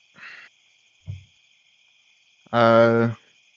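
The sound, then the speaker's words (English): A faint, steady high-pitched drone of night insects chirping and buzzing in a mountain forest at night runs throughout, interrupted by a few brief louder sounds, including a short tonal, voice-like call near the end. “You can hear the chirping and buzzing of bugs around in the mountains.”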